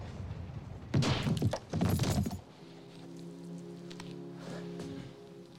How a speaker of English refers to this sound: Clifford, Clarence's dad, walks into his house. He gets punched in the face. There's a gun to his head. Then he gets knocked out. And you'll kind of hear it in this clip.